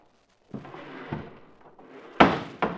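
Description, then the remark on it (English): A back door is unhooked and swung open: a few soft clicks and rattles, then two sharp knocks or bumps as it moves, with no talking. “Here, I'll unhook the door.”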